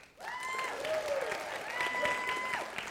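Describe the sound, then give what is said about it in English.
A crowd claps and cheers steadily for about three seconds, dense applause with excited whoops and a whistle-like shout rising above it, loud. “So let's vote. Clapping and cheering.”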